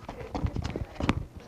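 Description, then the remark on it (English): A quick flurry of heavy foot stomps on a dollar bill on the floor, thudding irregularly for a second and a half with no talking. “If I stomp it,”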